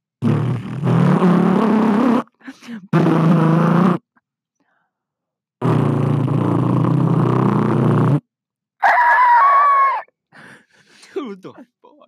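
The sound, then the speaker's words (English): Someone imitates a race car engine with their voice in several loud, buzzing bursts, the last one rising into a higher whine before trailing off into a few short, scattered sounds. “I'm making race car sounds.”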